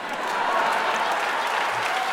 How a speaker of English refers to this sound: and like everyone's like, oh, we've got to clap.